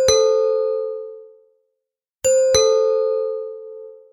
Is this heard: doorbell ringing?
yes